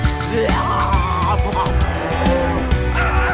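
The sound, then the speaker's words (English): Cows moo in a few drawn-out, wavering calls, one long low moo followed by shorter ones, loud over a steady humming background. “Milkweed sea cows!”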